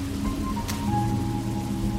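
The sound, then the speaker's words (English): Steady, dense rainfall hisses without pause among tall redwoods in a forest halfway up a mountain during a storm, with a low droning hum underneath and one brief sharp crackle partway through. No voices are present. “The rain was showing no signs of letting up when I stumbled upon the cabin.”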